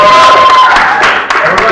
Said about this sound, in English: Round of applause. Woo!